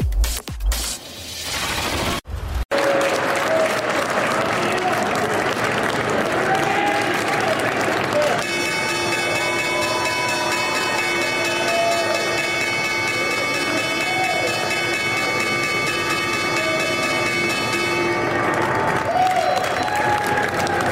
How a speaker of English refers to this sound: That was the opening bell over at the New York Stock Exchange, and US stocks are in rally mode this morning.